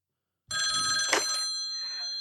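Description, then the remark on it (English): After a brief silence, a telephone bell rings out alone: one sustained, bright, metallic ring, fairly loud, with a sharp jangling surge partway through. “Well, we will fucking go to the phones.”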